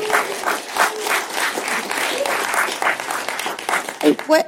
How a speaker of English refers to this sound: No, keep applauding for that, please. Yeah.